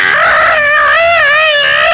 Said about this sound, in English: When he makes contact, the Shiny Man's fist bursts into flames and liquefies. The laser revolver tumbles away, melting as it falls. The Shiny Man drops the time drive and clutches his severed, melted limb, screaming.